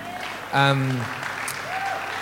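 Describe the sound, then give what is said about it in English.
A church audience applauds visiting guests with steady, dense clapping, and a single voice briefly calls out over it near the start. “I wonder if you could just give them a round of applause.”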